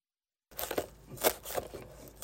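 A knife chops through cilantro for albondigas (meatball soup) in a home kitchen in Planada, a run of crisp, crunchy strokes in an uneven rhythm after a brief moment of silence, with soft rustling between cuts and no voices.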